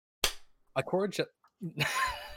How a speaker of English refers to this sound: Zaval exclaims, his words strained through gritted teeth as he slaps his palm against his desk.